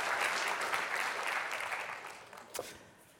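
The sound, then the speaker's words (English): A crowd applauds steadily in thanks to active-duty military service members, a dense wash of many hands clapping that gradually thins and fades, with one brief sharper burst of claps near the end. “Let's just give a round of applause and thanks for your service.”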